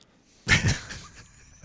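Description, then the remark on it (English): A single sharp sneeze bursts out suddenly and loudly, then trails off into quiet, followed by a faint click near the end. “Gesundheit.”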